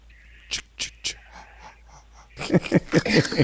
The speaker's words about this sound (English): Let me hear. What do you want to hear? Him he's breathing heavy.